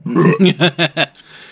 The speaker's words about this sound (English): 2, was that a belch? Bet.